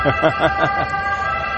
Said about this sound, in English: Nor am I organized, because every day I get hit with this ambulance or whatever it is that comes by.